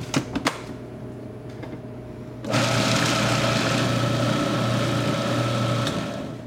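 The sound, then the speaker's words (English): A few clicks and a low hum, then a food processor motor whirs loudly and steadily for the last few seconds as liquid is streamed in, with no one talking. “And now we're going to let the food processor run and just stream this in.”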